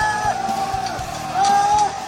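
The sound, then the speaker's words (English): A crowd in Shanghai yelling and shouting as a large number of people come out of an apartment complex, fighting with government workers in full body suits. One raised voice holds a long, high cry over the din, and dull bangs thump at irregular intervals underneath. “People are busting out.”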